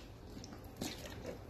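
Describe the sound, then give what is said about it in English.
A single soft, wet gulp as someone swallows a mouthful of water, quiet, with low background hiss and no talking. “That was some good water.”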